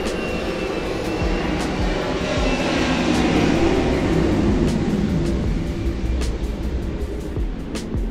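A steady, loud jet roar fills the whole stretch, swelling slightly in the middle as the aircraft passes overhead, with faint sharp clicks scattered through the rumble and no voices.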